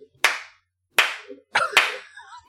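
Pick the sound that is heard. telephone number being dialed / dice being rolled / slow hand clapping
slow hand clapping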